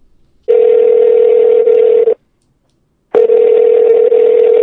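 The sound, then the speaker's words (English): A telephone ringback tone sounds over the line as a call is placed to a radio guest: two long, steady buzzing rings separated by a brief silence, loud, with no voices. “Let's get him on the phone.”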